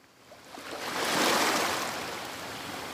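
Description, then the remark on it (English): Atlantic Ocean breakers crash onto a five-mile sandy beach on an island, a broad hissing wash that swells to a peak and then lingers as steady surf noise. No voices are heard. “It's an island, so you have to take a little boat, and it's 5 miles of sand and Atlantic breakers crashing.”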